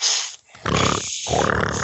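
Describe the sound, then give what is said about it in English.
Someone blows their nose hard, a series of loud, rough, honking blasts with brief pauses between them, and no talking. “You realize I gotta need to blow my nose.”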